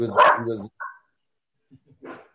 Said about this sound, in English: That sounds like a big, mean dog you got there. A boo-boo. This will eat your leg in half, bite him in half, honestly. I believe it. It sounds vicious.